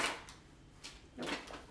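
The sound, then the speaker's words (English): A few short scraping, rattling bursts, like a drawer sliding open and shut with contents shifting inside, fairly quiet, with no talking. “You checked all the junk drawers?”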